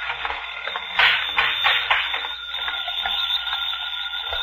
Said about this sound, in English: Say, isn't that your... Yeah, the phone.